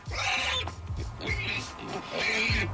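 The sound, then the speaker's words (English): A pig sound effect for a teacup pig: three harsh, squealing grunts in quick succession, loud, with short gaps between them and no talking over them. “Doesn't sound happy. I feel like the pig should be happier sound effect.”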